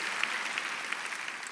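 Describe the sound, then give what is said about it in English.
Steady audience applause, a dense patter of many hands clapping at an even level throughout, with scattered sharper individual claps standing out and no voices. “I need a round of applause right now.”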